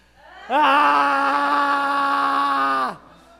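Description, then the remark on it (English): A group of people lets out one long, loud groan in unison on a count of three, holding a steady pitch for about two and a half seconds before sliding down and stopping abruptly. “I was a little bit less of a groan and more of just a scream.”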